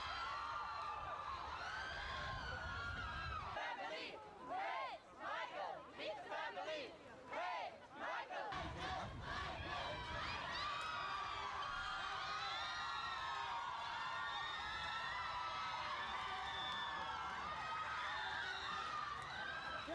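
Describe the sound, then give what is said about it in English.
A large crowd screams continuously at a high pitch, a dense wall of shrieking voices that briefly thins into separate wavering cries before swelling back to full, sustained intensity. “That's enough people screaming for a while.”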